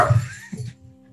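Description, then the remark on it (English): A dog named Bailey barks twice in quick succession, two short, fairly loud woofs with no one speaking over them. “For those at home, Bailey's my dog and he's a really sweet boy. He just likes to talk.”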